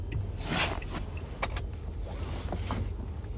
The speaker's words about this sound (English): And I'm going to try to park this damn car a little better than I did.